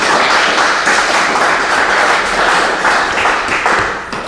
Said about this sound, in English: So I'm glad you're clapping.